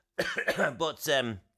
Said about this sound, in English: I was a bit scared, to be honest, at first. And so I got a bit of a space cough.